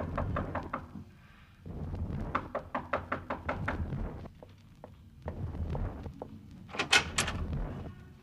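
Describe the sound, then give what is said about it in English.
Loud, repeated knocking by a police officer on the wooden door of a numbered room in a tenement hall on 110th, delivered in several quick bursts of sharp raps with short pauses between, echoing slightly in the hallway, with no talking. “You bring yourself to the wrong door, Senor Police. Go skin your knuckles in another place.”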